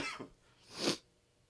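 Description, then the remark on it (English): A person coughs after choking on a little Schweppes that went down the wrong pipe: a short, softer cough followed by one loud, harsh, sputtering cough, then quiet. No talking. “No, I just choked on a little Schweppes.”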